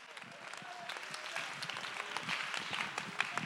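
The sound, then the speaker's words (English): An audience claps their hands together, a dense patter of many overlapping claps that grows steadily louder and fuller over a few seconds, with faint voices underneath. “Let's clap our hands and give him great praise.”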